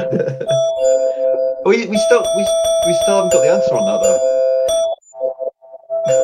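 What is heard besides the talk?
doorbell ringing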